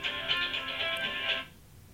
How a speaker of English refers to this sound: Don't mind his phone. It's fine. That's why I keep it unedited, because this is what happens in real life when you're talking to people.